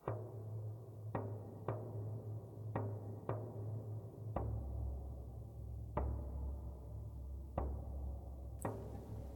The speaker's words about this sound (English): There is a horrible, just rhythmic metal banging.